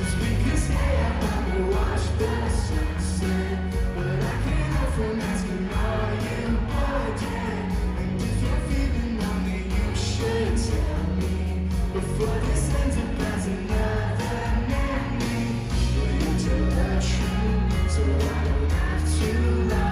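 A song played live with a full band and steady beat, a crowd's voices singing along loudly over the music, with occasional cheers and yells throughout.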